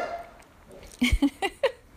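A dog, excited by a squirrel at the window, lets out four short, sharp barks in quick succession after a quiet moment, moderately loud, with no talking over them.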